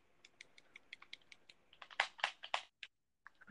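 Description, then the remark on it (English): Rapid mashing of PC keyboard keys during a Roblox game: a quick run of sharp clicks that speeds up and grows louder into a dense, frantic burst, then breaks off with a few scattered taps. Fairly quiet, with no talking. “You mean keys on your keyboard because we're PC gaming?”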